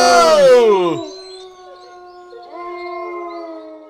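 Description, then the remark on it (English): A pack of wolves howls, one loud howl sliding downward before several long, steady howls overlap and carry on together, with no talking. “Mike, watch out for that pack of wolves!”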